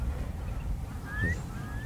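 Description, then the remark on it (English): A curlew calls twice from up in the air, thin rising whistled notes that are fairly faint, over a steady low rumble of boat engines carried across the water. “There's a curlew up in the air somewhere there.”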